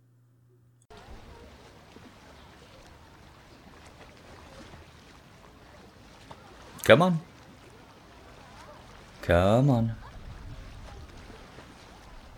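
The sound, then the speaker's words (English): Water sloshes steadily and close by, broken by two louder, brief splashes a few seconds apart, while a voice speaks briefly over it. “It's okay. It's just water.”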